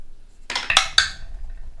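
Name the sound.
dice being rolled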